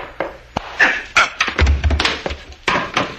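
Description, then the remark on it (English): A man is struck hard with the butt of a gun amid a loud scuffle: a run of sharp, heavy thuds and knocks landing in quick, irregular succession over a low rumble, with no talking. “You didn't have to hit him so hard, Frank. That's the way you hit people, with the butt of a gun.”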